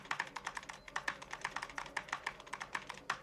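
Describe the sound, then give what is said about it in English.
Fast, continuous keyboard typing with sharp, irregular key clicks in quick succession, fairly quiet, with no voices: Jimmy Doohan as Scotty typing rapidly on an old computer keyboard. “Watching Jimmy Doohan type that rapidly on the computer.”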